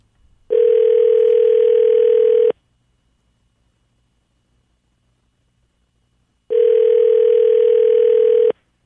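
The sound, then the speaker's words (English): A telephone ringback tone on an outgoing call: two steady, loud two-second purrs separated by about four seconds of silence, with no voices. “Phone call. Great phone call.”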